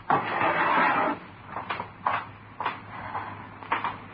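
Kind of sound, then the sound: household object, drawer opened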